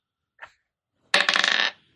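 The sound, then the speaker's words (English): A single faint click, then dice rolled for damage clatter and rattle across a hard surface in a quick burst of sharp, bright taps for about half a second before stopping. No one speaks. “Either way, he takes 6 damage, but do the 12 saving throw.”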